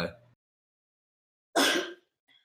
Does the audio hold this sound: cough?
yes